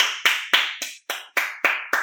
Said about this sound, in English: I'm just going to pause and give a round of applause because that was one of the fucking phenomenal That was a phenomenal fucking summary. Just join me, folks.